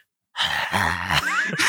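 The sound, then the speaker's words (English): A voice imitates heavy, raspy breathing, as of something breathing on one's neck: a loud drawn-out huffing exhale with a groaning tone, then a sharper breathy rush at the end, with no words spoken. “Yeah, you start breathing on your neck.”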